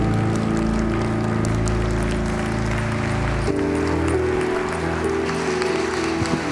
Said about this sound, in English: Would you give the Lord a huge hand clap of worship and a hand clap of praise?